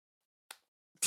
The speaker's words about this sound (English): No one can see this right now. But they can hear it. They can hear it. Okay, now let's hear me slap my arm.